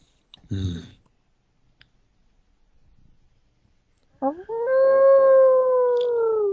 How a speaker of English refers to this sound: The sound of the wolf's howl sounds once more through the cold night, reminding you of a newer threat, a darker threat.